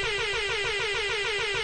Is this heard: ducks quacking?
no